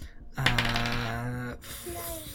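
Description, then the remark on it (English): Several dice, including twelve-sided dice, clatter and rattle across a hard tabletop for a damage roll in a tabletop game, with a brief ringing spin before settling, then a few faint knocks; moderately loud, no talking. “I need quite a few dice for this.”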